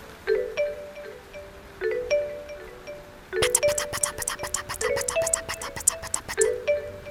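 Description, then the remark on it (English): A few soft chime-like notes ring out at a steady pace, then a dense, rapid patter of snapping and tapping takes over, people imitating the sound of rain. “Can you do the sound of rain with me?”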